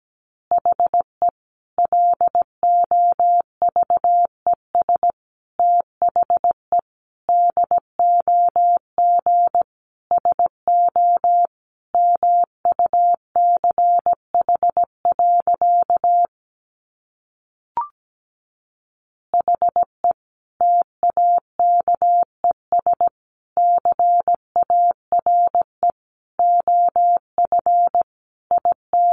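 Morse code sent at about 17 words per minute: a single steady mid-pitched tone keyed in quick dots and dashes, with one short pause partway through. No voices.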